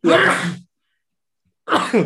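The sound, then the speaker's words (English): Two loud sneezes separated by about a second of silence, each a sudden breathy burst with a voiced, throaty edge. No talking around them. “Excuse me, sneezing on yes, the podcast.”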